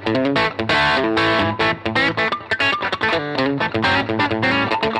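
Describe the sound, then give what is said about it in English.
A crunchy, overdriven electric guitar plays a lead line on the amp's lead channel, set a little crunchy, with choppy, rhythmic phrasing, its gritty distorted tone loud and steady with brief gaps between notes and no talking over it. “I just like to set that a little crunchy, you know what I mean?”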